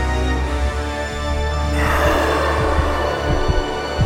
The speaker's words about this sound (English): Her hands were trembling. Her heartbeat was so loud that her eardrums felt like they were about to burst.